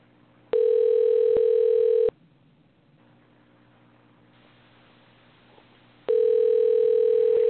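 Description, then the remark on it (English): A phone line rings out twice, each ring a steady electronic buzz-tone about one and a half seconds long, separated by a long quiet pause with faint line hum. No one answers, and the call is forwarded to an automatic voice message system. “Let's try and get the big boy back on the phone.”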